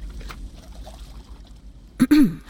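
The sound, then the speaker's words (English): Gentle watery sloshing and trickling, then a brief, louder splash near the end, as a woman leaps into the water of a bay in the evening sun and begins to swim. “leapt into the water and began to swim.”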